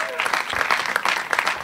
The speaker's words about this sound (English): Big round of applause